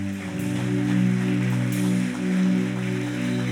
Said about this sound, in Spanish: El primer regalo es que Jesús está en su corazón y que la iglesia está feliz y le va a dar un aplauso.